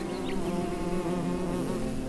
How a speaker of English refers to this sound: You're not gonna believe this. I'm surrounded by the bees. I think they're trying to say something.